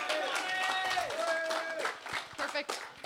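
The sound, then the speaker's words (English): An audience claps steadily for about three seconds as a volunteer is called up on stage, with shouts and cheering voices rising over the applause before it thins slightly toward the end. “Everyone give him a big round of applause.”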